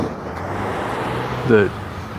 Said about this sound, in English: somebody like that guy who came across with a truckload of stuff and didn't slow down quite enough so that everything in the back of the truck jumped